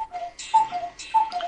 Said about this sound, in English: Ah, the cuckoo clock. There it is. The hour chimes. Go ahead. This is the top of the hour. We get the music. So here this is running commentary on my cuckoo clock.